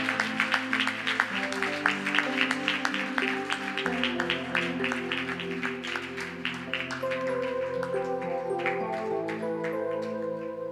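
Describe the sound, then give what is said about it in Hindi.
A church audience claps steadily for several seconds, the applause dense and continuous over sustained background music with held tones. “हम लोग तालियां जरूर बजाएं।”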